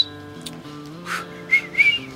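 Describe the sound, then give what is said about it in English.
A person whistles a few short, breathy notes, ending in quick bright chirps, over a steady low droning tone in the background. No one speaks. “Can you give me a little whistle?”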